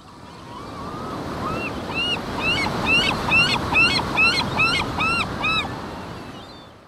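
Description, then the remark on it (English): Steady rushing surf and gusting wind fill the whole recording, with a gull's rapid series of sharp, repeated cries rising loud above it in the middle. “A gull's call slices through the turbulent winds of the ocean shore.”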